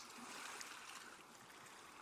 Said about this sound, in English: See if you can synchronize your breath with the water. Listen to the seagulls and the sound of the ocean. Very soft wind.